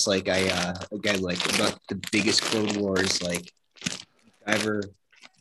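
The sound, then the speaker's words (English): A dog crunches and chews on something, with short crisp crunching bursts mixed in and around a man's steady talking. “Like dive into eating Doritos right now. No, that's my dog.”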